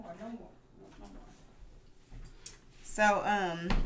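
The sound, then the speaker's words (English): A squeaky toy lets out a loud, pitch-bending squeal near the end, after a quiet stretch with a few faint bumps and a brief murmur at the start. “come on with that squeaky.”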